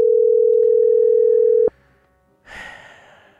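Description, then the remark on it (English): A loud, steady telephone dial tone hums for under two seconds as a call is placed to a person in California, then cuts off abruptly, followed by a short pause and a burst of hissy line noise as the call connects. “Let's see if we can get a typical Californian on the phone.”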